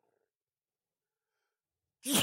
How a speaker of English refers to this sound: I think that's a first for me. I don't think I've ever sneezed on a podcast before. That's awesome. Allergy season.